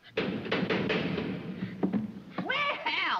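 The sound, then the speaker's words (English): A door knocker bangs several times in quick succession, loud, followed by a brief pause and then a wavering, ringing tone. “Please knock.”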